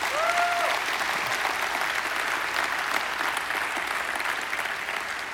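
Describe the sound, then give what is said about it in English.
A large audience applauds steadily for the volunteers who helped with a weekend, a dense wash of clapping that stays strong and even throughout, with a brief whistle-like tone near the start and no speech. “And so before we even get started today, could you help me out and give a round of applause for all of our volunteers who helped with that weekend?”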